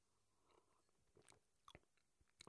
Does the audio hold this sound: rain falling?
no